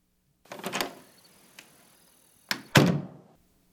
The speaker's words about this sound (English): Well, at least she did not slam the door.